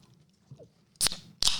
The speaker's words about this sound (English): Can they hear me chew?